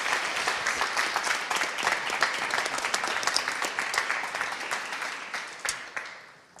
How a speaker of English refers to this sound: Will you celebrate with us just with a round of applause?